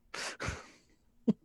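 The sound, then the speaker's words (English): A single sneeze, a breathy burst that trails into a noisy exhale, followed a moment later by a short, sharp sniff or throat sound. “Bless you.”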